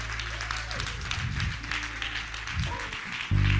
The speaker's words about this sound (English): Come on, give him a great round of applause.